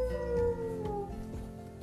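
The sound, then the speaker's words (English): A single long wolf howl holds a steady, sustained tone that sags slightly in pitch as it fades, sounding moderately loud with no voices present. “You see, wolves, they howl like that to talk to each other.”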